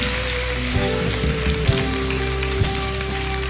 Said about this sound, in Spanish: Vamos a darle un aplauso al Rey.